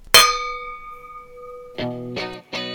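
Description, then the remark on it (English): Wine glasses clink together in a toast: one bright, high ringing chime that hums and slowly fades, followed by a few short, busier bursts of sound. “Cheers to that.”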